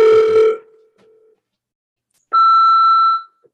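Two electronic phone tones separated by a brief silence: a short harmonic-rich beep fading out, then a longer, steady high-pitched voicemail beep, clear with no talking, as a voicemail is left on Danny Braff's phone.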